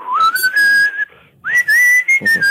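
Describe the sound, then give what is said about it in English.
Someone whistles a short melody, two sustained phrases with gently rising and wavering pitch, separated by a brief pause. No one speaks. “And then the second time around, I start whistling it just to show that I want another instrument to do.”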